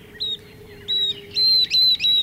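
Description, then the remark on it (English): A northern beardless tyrannulet, a tiny flycatcher, sings in a dry arroyo in the Southwest edged with yucca and cactus: a series of thin, high, clear whistled notes, four or five in a row that grow longer and louder toward the end, with a steady low hum underneath and no talking. “That's a northern beardless tyrannulet singing, a tiny flycatcher with a very distinctive voice.”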